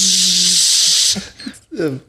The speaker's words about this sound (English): It, you know what it is? It's the ice maker.